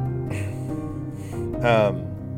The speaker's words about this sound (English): Everybody gasps again.